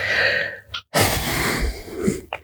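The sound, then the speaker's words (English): A dog, Boog, sniffs at the microphone in quick, loud, breathy bursts, with a brief silent gap partway through and sharp snorting puffs of air in between. “He wants to sniff at the microphone.”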